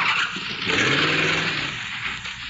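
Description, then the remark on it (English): A car roars off, its engine revving up beneath a harsh, sustained high-pitched screech of tires, loud for a couple of seconds with no voices. “Sonny, don't take my car!”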